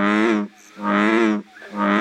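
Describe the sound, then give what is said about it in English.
Three deep, resonant bullfrog calls in steady succession, each a loud, buzzy bellow lasting about half a second with short gaps between, clear with no talking, heard in Brown County in June. “In June, expect to hear in Brown County, bullfrogs would probably be most conspicuous.”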